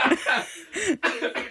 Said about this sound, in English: Wow, that was intense. Yeah, well, you should have been there yesterday. Sorry, I'm coughing and spluttering. I've had COVID.